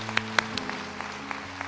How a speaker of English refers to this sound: Would you bless them with an applaud and thank you in the name of Jesus. Thank you, Lord.